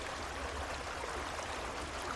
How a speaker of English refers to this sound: It has the sound of the creek behind my cabin in the background to help you relax and let go a little more deeply.